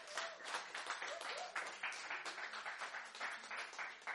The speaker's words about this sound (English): That's worth clapping about. I mean, come on.